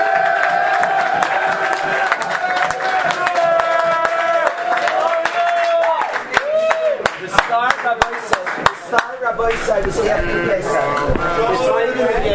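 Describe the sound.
A crowd of students, many of them 12th graders, cheers and whoops loudly, sustained voices overlapping with scattered sharp claps throughout, the shouting shifting in pitch near the end.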